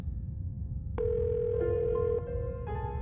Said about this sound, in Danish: Telefonen ringer, men ingen svarer.